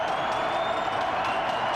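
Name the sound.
stadium crowd cheering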